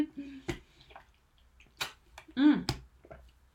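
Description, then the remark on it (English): Someone drinks from a handy-sized, leak-proof reusable water bottle: a few sharp plastic clicks from the lid, soft sips and a swallow, then a brief satisfied breathy sound. “Oh, I've got one just here. I was just thinking I needed a drink.”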